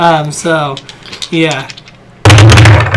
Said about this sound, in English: And you have the black dice, and you're gonna roll it, and then I will ask you a question based off of that.